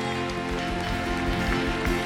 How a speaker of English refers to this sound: Come on, let's applaud our way maker this morning.